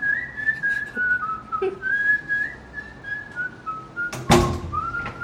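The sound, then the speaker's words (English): A person whistles a clear, wandering tune, the notes sliding and steady, with a sharp thud or door knock cutting in once near the end. “Enna boss, whistle pannittu irukkeenga?”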